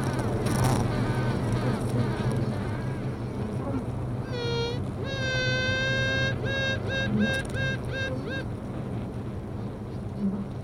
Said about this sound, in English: So as soon as this first queen bee had started piping, another two started to pipe.